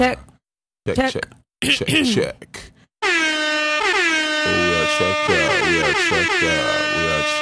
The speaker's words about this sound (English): Might need to hit them air horns again.